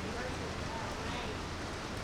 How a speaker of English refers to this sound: In my building, I know how it sounds, you know, but in your building, I don't know, as far as how loud it is. Can you hear me back there now? Did they get it? No, it's just raining louder, right?